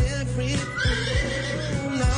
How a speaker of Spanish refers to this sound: Ahí está la carraca burro.